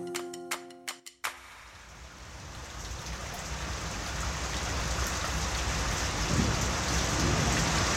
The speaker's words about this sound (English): I think we got about 200 mils of rain. That's what caused a lot of the problem.